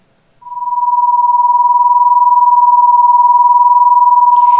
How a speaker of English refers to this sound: If the two frequencies are different, but fairly close, instead of a unison sound, we hear a beating sound, often described as a wobbly or a wah-wah-wah sound.